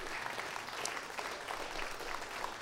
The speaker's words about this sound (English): But I want my wife, I want the queen to come and greet you in Jesus' name. Would you clap your hands and praise God for her?